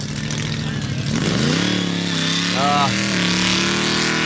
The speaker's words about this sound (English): we do want a big old burnout.